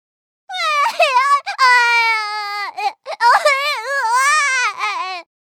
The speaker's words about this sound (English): Sissy plucked herself down on the ground and started to cry out loud.